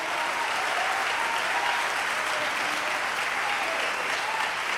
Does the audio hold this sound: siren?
no